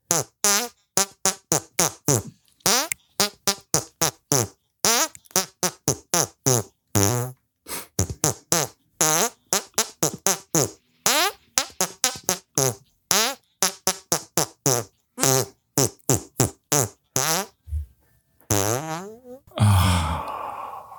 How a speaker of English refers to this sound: That's the guy with the hand farts. Did you hear that? He was hand farting over there.